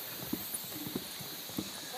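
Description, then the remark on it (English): Hollow footsteps thud on the wooden planks of the Miyamabashi bridge, a handful of uneven steps with short pauses between them, set against a steady, airy outdoor hiss. “footsteps on the wood.”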